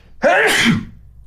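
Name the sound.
sneeze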